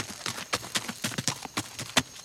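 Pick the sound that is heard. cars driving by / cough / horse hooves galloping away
horse hooves galloping away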